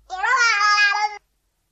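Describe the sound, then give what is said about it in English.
A baby lets out one drawn-out, high-pitched vocal sound lasting about a second, fairly loud and steady with a slight waver in pitch, then stops abruptly. No one else speaks. “A baby was the correct answer.”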